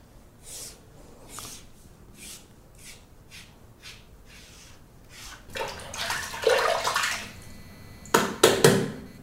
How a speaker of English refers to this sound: And then the shaver that I'm using now, I'll use that on my right underpit. So I'm not doubling up and wrecking the razor because they're cheap.